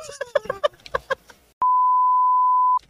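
A steady, loud censor bleep tone sounds for just over a second, right after a run of short, choppy, voice-like bursts, then cuts off abruptly.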